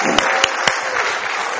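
A crowd of many people claps steadily in a dense, even wash of applause, with three sharper, louder claps standing out in the first moments. No one speaks. The crowd is clapping in response to a preacher's line that Jesus rose from the dead.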